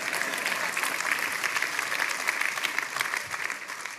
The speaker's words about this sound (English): Clap for that one, because it gets rough after that.